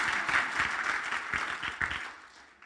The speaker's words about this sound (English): I think you're very helpful. Give him a round of applause because he is a beautiful assistant.